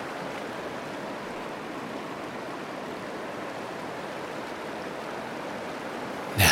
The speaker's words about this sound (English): Simply relax and allow the forest river to wash away all of your worries, cares, and stress downstream.